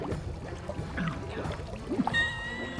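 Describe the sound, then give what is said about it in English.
Sulfur-smelling water beside a shifting shaggy hummock churns and bubbles furiously with a busy, gurgling texture and scattered pops, moderately loud, joined near the end by a faint sustained tonal hum. “And to your horror, the hummock shifts as the water begins to bubble furiously.”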